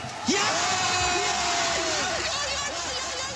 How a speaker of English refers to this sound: Mikkel Hansen does this like wonder throw, goes right in the top corner and the crowd goes wild.